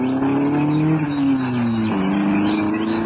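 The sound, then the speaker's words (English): A car engine accelerates with a steady, rising drone as the car drives away from where it was parked by trees. The pitch drops at a gear change midway, then the car pulls on. It stays fairly loud throughout, with no voices. “And there he goes, down to the trees. Yeah, that's where he's parked his car.”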